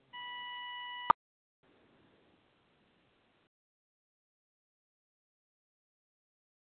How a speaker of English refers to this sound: There's some beeping going on here. Can you hear me?